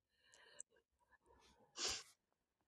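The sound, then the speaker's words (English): A sleeping Aussie dog snores in the morning, with wheezy, nasal breaths building to one loud, snorting exhale before trailing off into quiet. “Such a lucky boy, this Aussie, this morning, isn't he? He's snoring.”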